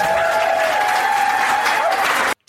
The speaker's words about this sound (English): I'm going to have to press the wild applause button.